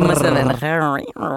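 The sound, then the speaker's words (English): A person lets out a short, playful growling roar, imitating a tiger: a rough, low rumble that rises into a strained vocal cry, lasting just over a second, loud. “I mean, I was a tiger in a past life.”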